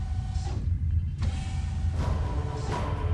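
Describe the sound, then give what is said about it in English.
Futuristic sliding doors of a room hiss open and shut in a few quick mechanical bursts as someone walks out, each a sharp airy whoosh over a steady low hum, fairly loud. “She walked out of the room and the doors hissed shut behind her.”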